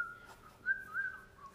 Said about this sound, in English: I whistle a jaunty tune while I'm waiting.